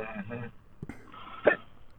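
human body sound, hiccup

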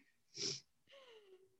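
human body sound, coughing

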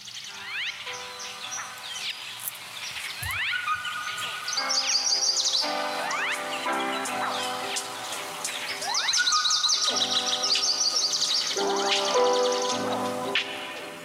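bird, birds chirping sound effect

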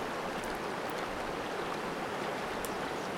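nature, flowing stream water

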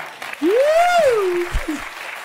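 crowd, thunderous audience applause

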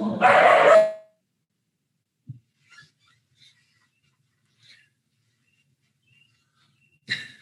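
animal, dogs barking

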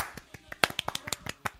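human body sound, soft golf clap

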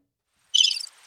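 sound effect, cricket chirping sound effect

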